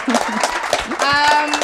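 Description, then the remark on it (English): An audience at a live panel show claps steadily for the panelists on stage in a dense, crackling wash of applause, with cheering voices and a high whistle-like tone joining in partway through. “More applause for them.”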